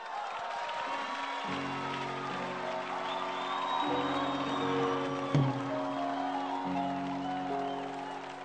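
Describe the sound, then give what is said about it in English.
A crowd claps steadily, a dense, continuous wash of hand clapping with some cheering, while sustained keyboard chords play underneath and shift every couple of seconds. “You can clap your hands better than that.”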